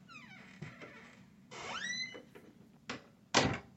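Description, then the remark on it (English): A door with a facial recognition lock creaks open with a rising, squeaky hinge groan as someone steps out, followed by a couple of muffled thuds like footsteps or the door knocking against its frame. No one speaks. “All right, so I'm gonna run that file and step out the door here.”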